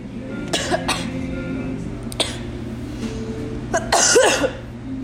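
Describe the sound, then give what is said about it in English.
A sharp sneeze bursts out near the end, preceded by a few shorter breathy coughs or sniffs, all over a steady low background hum with no talking. “Bless you.”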